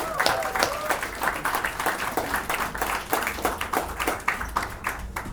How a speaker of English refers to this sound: The third issue of Migrant Journal has just come out, and I think it's my favorite so far. So a big round of applause for the guys at Migrant Journal.